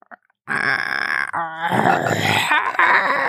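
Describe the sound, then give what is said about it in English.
A voice imitates a low growl: one long, raspy, croaking groan lasting nearly three seconds, rough and guttural with a strained rattle, starting after a couple of faint clicks. “So anyway, I'm listening to this conversation when all of a sudden I hear a low growl literally right next to my ear.”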